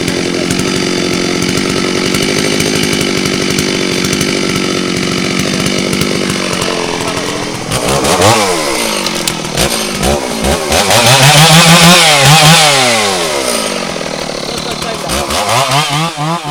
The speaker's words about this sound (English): These mahoganies spread out at the base, like an elephant's foot, or more like a duck's foot. And the worker doesn't cut the tree straight across, but instead he's injecting his saw into the tree vertically, straight up and down